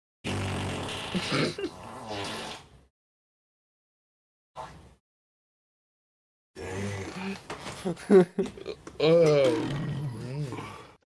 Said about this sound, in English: I hope that was his buddy, or was that just him? Was just him, dude. Damn. That was him. Burp. That's his whole thing, dude. He rips major ass, and he's also a glutton.